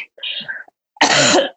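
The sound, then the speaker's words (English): Two coughs: a shorter, rougher one, then after a brief pause a louder, harsher burst. No one speaks. “Sorry, I just coughed everywhere again.”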